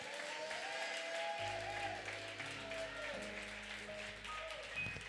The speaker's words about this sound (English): Come on, give God a hand clap of praise right there.